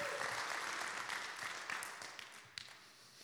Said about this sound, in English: Can somebody give God a hand clap this morning?